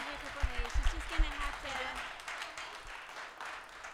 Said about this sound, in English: They want more. They want more. If you clap loud enough, maybe they might give you another one.